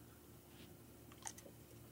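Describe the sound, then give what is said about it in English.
A few soft, quick clicks of six-sided dice (D6) knocking around inside a dice box during a tabletop game come in a short cluster partway through, faint over a low steady background hum. “How do you cock a D6? I swear to God. Dice box.”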